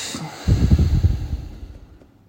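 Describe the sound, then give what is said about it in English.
A single long, breathy exhale during a breathing exercise, breathing all the way out, starting strongly and slowly fading away over about two seconds, with no talking. “And then out. All the way out.”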